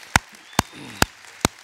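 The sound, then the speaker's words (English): Four sharp, evenly spaced claps ring out in a steady rhythm at a Palm Sunday weekend service at the Summit Church, each a crisp loud snap, with only a faint murmur between them. “Yeah, we can clap for that because that's pretty awesome.”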